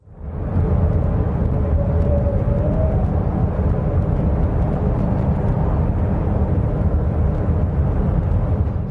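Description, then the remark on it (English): A steady, low rumbling drone, the mysterious hum that people on the Canadian side have reported coming from an island for about a decade, fills the whole recording, broad and noise-like with heavy bass, holding constant loudness without pauses. No voices. “And people who live around this area, specifically on the Canadian side, for like a decade now, have reported hearing this loud, mysterious hum coming from this island.”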